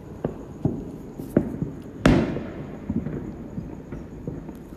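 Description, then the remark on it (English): Distant Fourth of July fireworks over Los Angeles, heard from a balcony, pop and boom irregularly, with one louder, sharper blast in the middle whose crackling tail fades away, over a low rumbling background. No one speaks. “I'm seeing all these different fireworks in all these different cities.”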